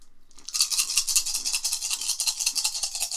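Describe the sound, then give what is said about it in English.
Seven dice rattle and clatter together in steady, rapid shaking, rolled for an aim shot in a game. The shaking starts after a brief pause and continues without letup, bright and fairly loud, with no one speaking. “Okay, I'll do the aim shot with the minus one, but that will give me seven dice in total.”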